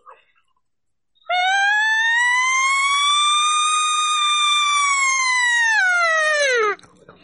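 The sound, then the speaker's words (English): A person's voice imitates a long, siren-like cow call, the basic sound for cow and bull calls: one sustained tone that rises, holds steady for about five seconds, then slides down sharply at the end. Loud, with no other sounds. “And then from there, you learn that little siren like I just did. And that's your basics from all your cow sounds and all your bull sounds.”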